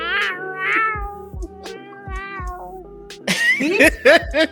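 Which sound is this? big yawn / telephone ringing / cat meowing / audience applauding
cat meowing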